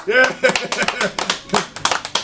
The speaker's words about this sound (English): Sympathy applause.